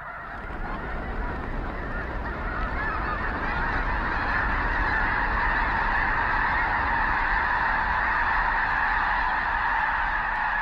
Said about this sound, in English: We leave you this week with a sound for the season. Lang Elliott and Ted Mack caught up with a flock of migrating blue geese resting on a flooded field near Brampton, South Dakota.